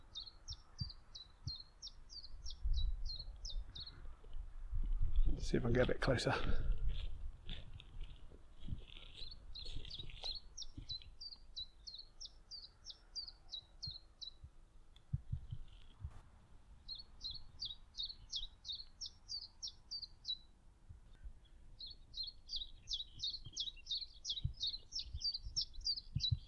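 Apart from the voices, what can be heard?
chiffchaff singing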